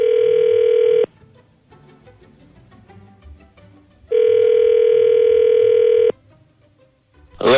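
A loud, steady telephone ringback tone as a phone call is placed, sounding twice, about a second then two seconds long, separated by a quiet pause with faint background noise, and a short burst of sound at the very end.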